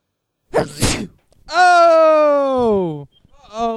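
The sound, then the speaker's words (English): A single sharp, breathy sneeze bursts close to the microphone, followed by a long, drawn-out vocal moan that slowly falls in pitch, then a brief voiced sound at the end. “there was one episode where you were sneezing over and over into the microphone”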